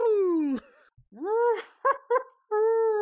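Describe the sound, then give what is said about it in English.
A voice imitates a loading-screen style muffled scream, like Kenny from South Park: a long falling moan, then a rising wail, two short clipped yelps, and a final steady held cry, all strained and humming as if through a closed mouth. “Can you do your best loading screen, like, muffle scream?”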